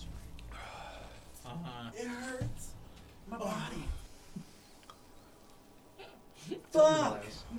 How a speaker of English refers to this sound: Dude, fuck. I'm getting the hiccups.